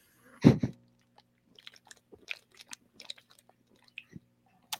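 Gulping of a drink being chugged: one loud swallow near the start, followed by a scattered series of small, wet mouth clicks and quieter swallows, with no talking.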